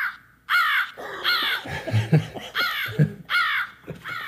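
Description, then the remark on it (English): A crow caws loudly, four harsh, raspy calls spaced about a second apart, with low background rumbling between them and no one talking. “I really miss crows, you know, the Corvines.”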